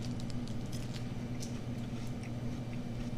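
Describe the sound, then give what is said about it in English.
Someone bites into and chews a Japanese Kit Kat: a run of short, crisp crunches and wet squishes at an irregular pace, fairly quiet, over a steady low hum, with no talking. “Every time I eat this, I love it.”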